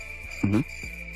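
Crickets chirp in a steady, high-pitched drone throughout, interrupted briefly midway by a short, low tonal sound; no voices.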